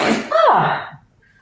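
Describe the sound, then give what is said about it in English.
A single loud sneeze bursts out with a sharp breathy explosion, then trails off into a brief nasal exhale before quiet. “God bless you.”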